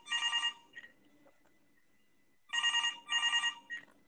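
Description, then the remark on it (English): A telephone rings for an incoming call with a classic double-burst bell pattern, one ring, a pause, then two more trilling bursts close together, clear and fairly loud with no voices, as a host takes callers on the line. “Let's get to the phones. See if we can take some calls and turn this into a conversation.”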